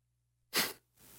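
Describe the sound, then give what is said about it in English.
A single sharp, hissing burst like a stifled sneeze breaks out of near silence, then trails into a softer, breathy follow-up like the start of a cough. It is brief, with no talking. “I was about to sneeze. Okay. But then it was going to turn into a cough.”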